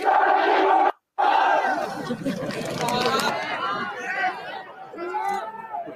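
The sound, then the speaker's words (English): A loud, dense crowd clamour with many overlapping voices shouting and yelling at once, continuous apart from a brief cut to silence about a second in. “Yes, I can hear a lot of noise. A lot of yelling.”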